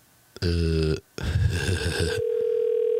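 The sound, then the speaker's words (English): Telephone line sounds on an outgoing call placed late at night to a cab driver in Colorado: a loud buzzy tone, a short pause, a harsh noisy burst, then a steady ringback tone holding to the end. No one speaks. “Oh, wow, it's ringing.”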